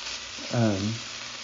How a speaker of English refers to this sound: There's chicken cooking. Just so you know, this noise is not for nothing.